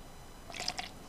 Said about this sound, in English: is pouring vodka into her cup right now.